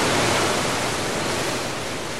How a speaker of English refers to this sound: Now to turn on the flood. And get out of here!